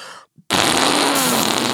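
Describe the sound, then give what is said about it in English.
A loud fart noise made by squeezing air through cupped hands: a brief sputter, a short pause, then a long, blaring raspberry-like blast with no talking. “You're so proud that you can fart into your hands.”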